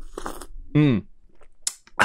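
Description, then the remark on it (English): Coffee-making noises from a video game, recorded right into the mic: crunchy, grinding bursts, a short squealing gurgle in the middle, then sharp slurp-like hisses near the end, with no talking. “I think we should have more slurping into the mic.”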